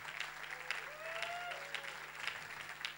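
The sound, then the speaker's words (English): A church audience claps steadily and densely for several seconds, giving the Lord a cheer, with a few voices whooping and cheering above the applause. “Why don't we put our hands together and give the Lord a big cheer.”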